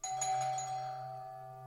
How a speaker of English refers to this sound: Just as I went to hang up, our front doorbell rang.